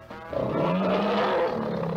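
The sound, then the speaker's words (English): A tiger's roar rises and holds for about a second and a half, loud, with a rough, harmonic growl that swells then tapers off, in an advertisement for Esso Extra gasoline from Humble Oil and Refining Company. No one speaks over it. “So ask your Esso dealer to uncage that tiger for you.”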